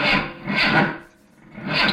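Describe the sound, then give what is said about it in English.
A car engine cranks but fails to start: loud, rough grinding churns in a rhythmic pattern, two strokes, a brief lull, then another try. No one speaks. “And the car never starts, does it?”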